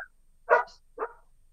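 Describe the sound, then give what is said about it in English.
Two sharp dog barks about half a second apart, moderately loud, with quiet in between and no talking. “We're listening to both you and the dog, whoever the dog belongs to.”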